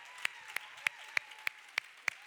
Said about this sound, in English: So, North Place, I need you to help me to give a big round of applause and a big hand for our first intern